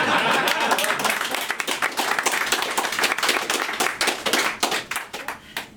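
An audience applauds: dense, steady clapping from many hands, loud at first, then thinning out into scattered individual claps toward the end.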